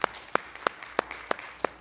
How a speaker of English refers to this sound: Come on, give him a hand clap tonight, please.